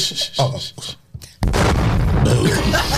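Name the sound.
bomb explosion sound effect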